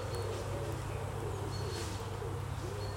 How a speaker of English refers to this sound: Now I can hear someone mowing their lawn.